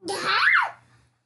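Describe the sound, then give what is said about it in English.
A toddler lets out a single loud, high-pitched squeal that rises and then falls over about a second, with no talking around it. “We're trying to wrangle a dog and a kid.”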